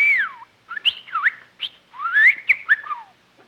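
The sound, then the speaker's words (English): A bird called Bertie whistles and chirps in a quick run of bright, sliding notes, rising and falling with short gaps between bursts. The calls are fairly loud, with no talking. “Say, you're a smart bird.”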